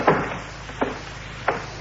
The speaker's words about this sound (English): Yeah, could I close the door, Captain?